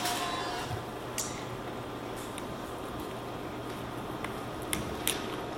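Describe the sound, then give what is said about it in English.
Someone drinking water, with a few soft wet sips and swallowing clicks spaced out over a steady background hiss and low hum. No one speaks. “Not the best way to have water.”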